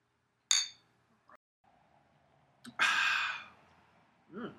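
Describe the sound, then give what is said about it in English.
A single bright clink of beer glasses in a toast rings out near the start, followed by a loud breathy exhale and a short vocal murmur at the end. “So, with that said, yes, I would love to cheers it up. Let's do it.”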